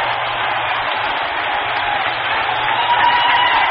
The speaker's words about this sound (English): Boy, did you ever hear more yelling around here?